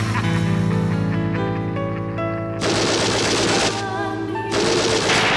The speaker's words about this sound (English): It's a loud screeches. And there's some harmony in the background. There's some, like, what'd you call, like, gunshots or something? There's the chainsaws. Yeah, the chainsaw.